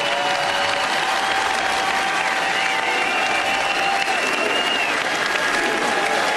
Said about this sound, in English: They're doing our USA chant.